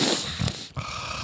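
Heavy, rasping nasal breathing, a continuous noisy huff that briefly catches and drops before the next breath pushes through, with no talking.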